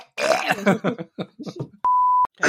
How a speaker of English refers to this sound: I coughed and a phlegm glob hit my fucking computer screen. I had to get it off.